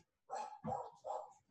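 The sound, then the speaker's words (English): A dog barks three times outside in a quick, steady rhythm, each bark loud and sharp with brief pauses between, heard on its own with no talking. “You can hear that. Okay, they're really barking out there.”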